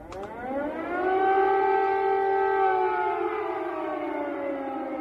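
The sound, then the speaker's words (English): A loud, sustained air raid siren wails steadily in Kyiv, Ukraine, during Russian military bombardment, its tone rising at the start and then holding a long, droning pitch with no voices present. “Tonight, air raid sirens going off in the capital city of Ukraine in Kyiv as the Russian military is stepping up its bombardment of the capital city in a big way.”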